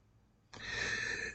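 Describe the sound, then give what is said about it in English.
A single throat clearing: one harsh, breathy rasp that starts abruptly after a brief quiet moment and holds steady for under a second before cutting off. No one speaks. “just trying to clear my throat here.”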